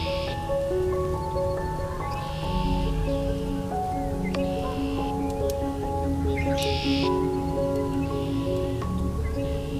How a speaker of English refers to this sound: Some Canada goose here too.